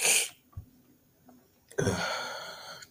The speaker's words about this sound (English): Going to leave all of this cough inside. I don't know what is irritating my throat, but I'm going to keep moving.